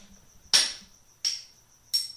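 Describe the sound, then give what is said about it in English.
At night, crickets chirp in a steady, thin, high-pitched drone that carries on unbroken while three loud, sharp thuds strike at roughly even intervals as something is thrown against the wall to try to silence them. No one speaks. “I think it was Elliot who figured out a way to silence the crickets by throwing something against the wall.”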